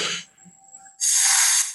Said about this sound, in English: So you're blowing out and you're breathing in and then blowing out. Just blow into the straw.